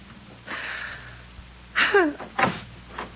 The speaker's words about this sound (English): Did I hear the front door slam? Was that wonderful, wonderful sound Agnes making her final exit from my life?